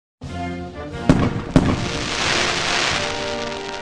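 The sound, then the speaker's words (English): Fireworks crackle and sizzle steadily, with two sharp, loud pops standing out early before a dense, fizzing crackle continues throughout. No one speaks. “summers just wouldn't be the same without the snap, crackle, pop of fireworks, especially on the 4th of July.”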